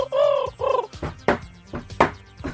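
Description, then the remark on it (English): A homing pigeon coos twice in low, throaty, wavering calls, followed by a few short, sharp flutters or clicks, with no voices. “There was 100,000 homing pigeons that were used for the war.”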